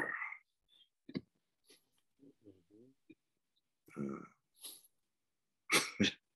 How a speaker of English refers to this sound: That was a bit of a weak growl there. Yeah, it feels quite animating, actually, as I do that.